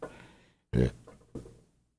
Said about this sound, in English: Sorry, I had a burp.